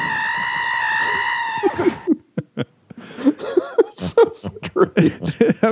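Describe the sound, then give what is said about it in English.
A goat in a movie lets out one loud, drawn-out, human-like scream lasting about two seconds, then choppy chatter and laughing sounds follow. “everyone was watching those screaming goat videos on YouTube”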